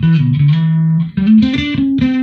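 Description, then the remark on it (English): A distorted bass guitar plays a short, gritty riff of sustained low notes sliding between pitches, loud, with a buzzing harmonic edge blended over a clean low tone; the effect is in B3K mode, with the blend set to mix the clean and distortion signals. “So blend, mix it between the clean and distortion signals. I'm not a distortion guy, but it gives.”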